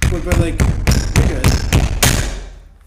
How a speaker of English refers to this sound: I gotta make some noise for a second. I ripped off the tab of my beer.